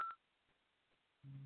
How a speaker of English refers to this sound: You might hear a little bit of a humming. Do you hear a humming? Yes. So that is the tuning fork for the heart.